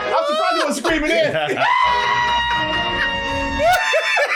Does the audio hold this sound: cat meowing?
no